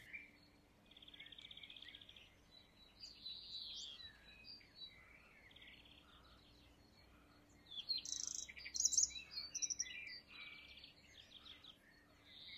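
Several birds chirp and sing in a quiet forest as a gentle breeze shifts and sways the leaves, their high tweets scattered throughout and growing busier near the end, over a soft steady background hush.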